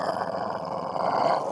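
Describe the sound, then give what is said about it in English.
A person imitates a growl, a steady low, rough rumble held for about a second and a half at fairly even loudness, with no words spoken. “Dogs also growl, but a person can growl.”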